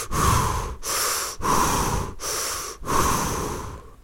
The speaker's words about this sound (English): Energy is you directing your fire and water into air, literally. So while I'm flowing energy, that's me literally breathing.